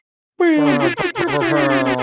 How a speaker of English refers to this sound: Stephen Hawking, put some air horn sounds here.